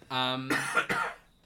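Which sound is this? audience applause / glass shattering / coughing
coughing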